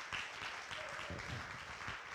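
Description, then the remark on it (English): A crowd applauds steadily, a dense wash of many hands clapping at once, sustained and fairly loud throughout with a few voices murmuring underneath. “So you should clap about that for Jesus.”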